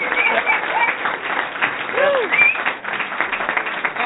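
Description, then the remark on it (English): A steady round of applause from many hands clapping at once, dense and fairly loud throughout, with a few brief whoops or voices rising above the clatter. “they get a round of applause. Round of applause.”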